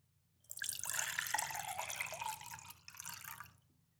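Liquid pours steadily into a glass for about three seconds, a bright splashing trickle that thins briefly near the end before stopping. It is heard alone, with no voices.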